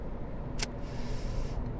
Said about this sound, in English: Going through a whole lot of traffic and shit right now. Shit, I'm just breezing through it on this fucking lane that I'm driving in. I'm just passing up all these cars.